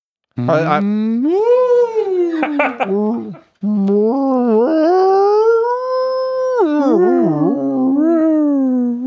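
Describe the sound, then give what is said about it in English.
A human voice imitates a whale-wolf howl: long, wavering, sliding tones in two drawn-out phrases separated by a short pause, loud and close, with no other sounds. “Who can make a sound that's a cross between a whale noise and a wolf noise?”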